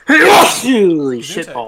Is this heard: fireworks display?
no